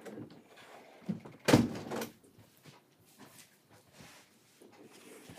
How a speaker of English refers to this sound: So it's next door. I'm going to close the window.